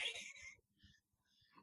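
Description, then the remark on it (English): A single sharp sneeze bursts out, hissy and loud at first, then trails off into faint breathy murmurs and quiet rustling. “There's a passive-aggressive sneeze you hear.”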